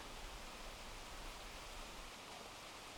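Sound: rain falling outside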